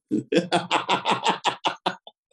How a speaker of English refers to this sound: I'm doing my smoker's cough now. I don't even smoke.